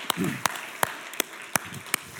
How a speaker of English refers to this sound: Hey, in fact, you know, I should have done this on the first one. Let's all give these guys a round of applause for the gift that they have.